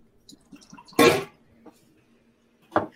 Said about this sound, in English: Just going to add my whiskey. I happen to know that there's an ounce and a half left in this bottle, so I'm just going to go bottoms up.